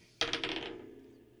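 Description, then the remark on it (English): Dice clatter across a hard tabletop in a persuasion roll during a game, a quick burst of several sharp rattling bounces that settles into a fading ring; the roll comes up 16. No voices. “Give me a persuasion roll.”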